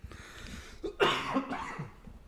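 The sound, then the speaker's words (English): A harsh cough bursts out and trails into a rough, raspy fit of hacking and throat sounds lasting over a second, with no talking. “It's coughing fest over here.”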